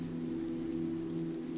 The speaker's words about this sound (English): accompanied by the sound of falling rain. You get lost in the motion of the night outside. Your tired eyes follow the crystal drops of rain, slipping down the panes of garret windows